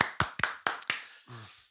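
A short bit of applause for the grow-product brand Hydrotops: about five crisp, evenly spaced hand claps, fairly loud, followed by a brief low buzzing tone. No one speaks.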